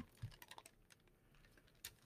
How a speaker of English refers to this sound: So let's go to Genesis chapter 30, and we'll pick up our lesson in chapter 30 of the book of Genesis. And if you hear my pages turning, it's because our microphone is pretty good.